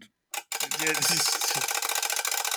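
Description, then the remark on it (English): A mechanical wind-up timer being wound: a fast, steady run of loud, dry ratcheting clicks after a short scrape, with a brief voice murmuring underneath early on. “It's like a regular wind-up timer, which is good, actually, because I didn't even consider batteries when I picked this up.”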